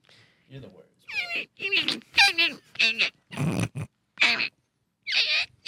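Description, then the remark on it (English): Someone shrieks and squeals in a rapid series of high, strained bursts, vocally imitating a bunny being mauled by a pit bull, with snarling growls mixed in, loud. “I wanted to make the noises of it getting mauled.”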